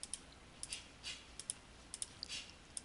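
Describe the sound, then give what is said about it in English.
Quick, light plastic key presses on a graphing calculator, such as a TI-83, as fractions are typed in, tapping out an uneven rhythm of single clicks and short bursts, fairly quiet, with no one speaking. “Notice how you type in fractions into a TI-83 or something like this.”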